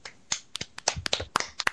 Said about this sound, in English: Round of applause.